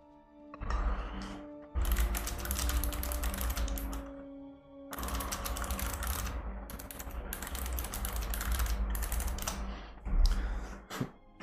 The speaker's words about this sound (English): I apologize, I was typing there too, so.